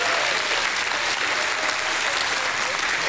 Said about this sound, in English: somebody ought to give him a hand clap and a shout of praise right there.